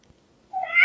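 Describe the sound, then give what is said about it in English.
A recorded cat meow plays through a small smart speaker running a voice-assistant cat-sound skill, a single bright, rising call that starts abruptly after a moment of near silence and grows louder toward the end. “Okay, letting all the cats out of the box.”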